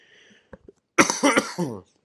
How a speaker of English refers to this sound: Oh, excuse me. I'm working over a cough here.